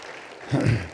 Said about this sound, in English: Yes, you can applaud.